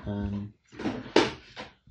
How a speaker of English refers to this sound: I open up my colour drawer here. Hang on. I've got a colour drawer. I've got all the latest. I've got Perspex in there. I've got a Rao book, British standards.